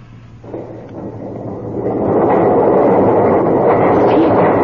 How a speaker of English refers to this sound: Look! The doors are opening. How?